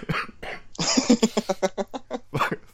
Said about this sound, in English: I've been really good at, like, muting my microphone when I'm getting a coughing attack, but, like, you just get me with someone out of the blue.